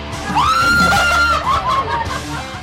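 A person lets out one long, high-pitched scream lasting over a second, loud, rising sharply at the start and trailing off, over a noisy, crowded background, at Scare Kingdom Scream Park during its 2021 Halloween season.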